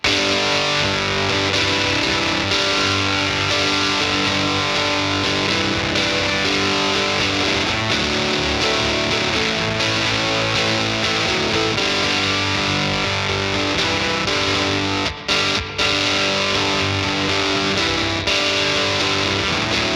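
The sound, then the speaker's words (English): Gritty, overdriven electric guitar with FSC 59 pickups, plugged into the Seeker and a Victoria 35-115 Tweed Pro circuit amp with Chase Bliss CXM 1978 reverb, plays a steady chordal passage with a grainy, crunchy tone and full low end, sustained and loud throughout, no voices present. “which is a Tweed Pro circuit. Really great, again, because it's grainy and grungy, but it doesn't eat up a lot of the low end, so this would actually fit really nicely in a mix.”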